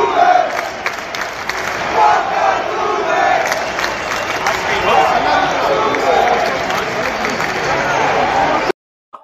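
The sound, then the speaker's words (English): A large baseball stadium crowd yells together in a loud, steady roar of many voices, rising in rhythmic surges for about nine seconds before cutting off abruptly. “Yeah, so here's a clip We're all yelling it.”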